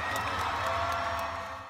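A large crowd cheers for Ian McGregor, Obi-Wan of Star Wars, in a loud, continuous roar of many voices, with scattered claps and whoops, easing off slightly at the very end.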